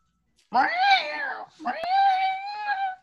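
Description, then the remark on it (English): Two long, drawn-out meows in quick succession from a female cat that is eating a piece of tape, loud, each a wavering, yowling cry with a brief pause between them and no other sounds around. “Hang on, my cat is eating a piece of tape. I just have to take it out of her mouth.”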